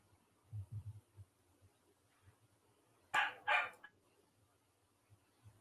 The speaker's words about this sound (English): A dog in the background. You know, we don't hear it that loud. I don't think. So you don't. Sounds pretty loud to me. It may sound loud to y'all, but it doesn't sound loud on our mics.